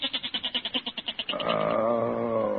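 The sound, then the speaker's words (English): A male goat bleats loudly at night, opening with a fast quavering stutter of about a dozen pulses before stretching into a steady, nasal baa. No voices are heard. “Listen to that goat, Peg. He's been baaing all night.”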